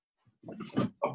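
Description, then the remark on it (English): A dog yelps in pain after being stepped on by its owner, a strained, squealing cry followed by a second shorter yelp, with no talking in between. “Oh, I'm sorry. I'm stepping on my dog.”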